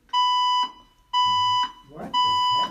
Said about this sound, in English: Oh, fire drill. There's been a fire reported in the building. Please proceed to the nearest exit and leave the building.